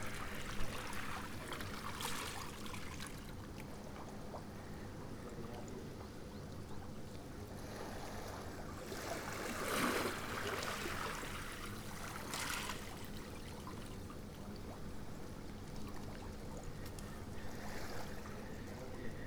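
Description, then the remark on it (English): Harbour ambience at the harbour in Portloo: a steady wash of moving water with gentle lapping and a few slightly louder splashing surges, continuous and without voices. “I'm at the harbour in Portloo.”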